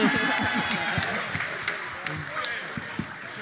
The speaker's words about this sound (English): Say in my old job, give yourselves a big clap.